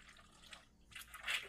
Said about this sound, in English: Is that the next level slurp? It's like a super slurp, a little mild painful aspiration.